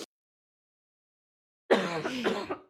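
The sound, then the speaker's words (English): After a stretch of silence, a single fairly loud cough rings out, lasting about a second with a rough, voiced edge. No one speaks. “You had a podcast cough.”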